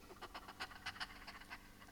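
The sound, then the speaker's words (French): Quick, rhythmic panting of beasts tied up in stalls along a long stable corridor at night, about eight breathy huffs in two seconds, soft, with no voices and no clear growl. “Les cris de bêtes, les grognements de fauves, les coups contre les murs, une odeur de fange.”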